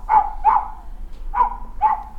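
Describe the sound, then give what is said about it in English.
A recording of a dog barking four times in two quick pairs, separated by a short pause, with steady low background hum, played through a speaker in a front room next to a mannequin of Mrs. Pumphrey and her dog Tricky Woo. “Pumphrey and her dog Tricky Woo, a recording of barking intermittently fills the air.”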